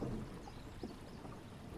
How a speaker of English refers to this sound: I'll give you a moment to think about it while I dock this old boat to the jetty.